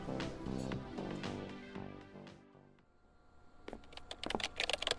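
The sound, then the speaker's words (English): Rapid clatter of keys on a computer keyboard as someone types up notes, a quick run of crisp clicks that picks up after a brief hush and continues to the end. “I have to finish typing these notes for Weber.”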